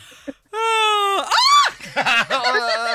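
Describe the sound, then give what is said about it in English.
A loud, drawn-out yawn. Partway through, the voice breaks into a rapid wavering warble as a finger is moved up and down in the wide-open mouth, chopping the sound up and down. “Yeah, because the thing about it is we all love a good yawn.”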